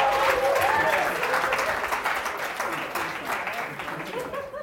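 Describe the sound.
A crowd applauds with steady, dense clapping that holds strong for several seconds and then gradually thins and softens, with a few faint voices calling out in the mix.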